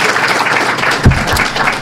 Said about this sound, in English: That applause was for the otter opening the wine bottle.